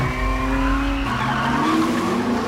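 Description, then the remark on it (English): A car accelerates hard with its tires squealing, a loud, continuous high-pitched screech over the roaring engine, the tones shifting partway through. No one speaks. “The name on the middle of that steering wheel should tell you that I was born ready”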